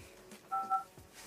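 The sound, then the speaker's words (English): A door sensor alarm gives two quick electronic beeps in close succession, clear and moderately loud, with no one talking, during super windy weather. “So I think like one of the doors shook or something. So it just told me like sensor was moot.”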